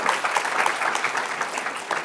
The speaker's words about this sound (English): Everyone, please give a huge round of applause to Daniela on Valentine's Day.